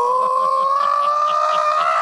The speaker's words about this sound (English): Oh, you did that thing of screaming over the microphone. That was nice.